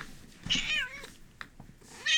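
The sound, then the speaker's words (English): A pet cat named Lina, trying to get in at the door, meows several times in short, high, wavering calls, with a loud bright meow at the start and another rising one at the end, separated by quieter gaps. “Lina, are you squeaking at the door?”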